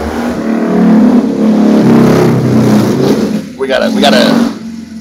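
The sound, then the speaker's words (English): A chopper motorcycle engine rumbles loudly with a low, throbbing tone, then briefly drops off before revving up again in quick rising bursts near the end. “We got a chopper, baby.”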